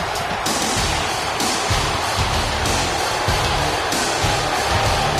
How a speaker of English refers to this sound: Brock Lesnar with the not-so-impressive victory. You can actually hear the crowd booing this.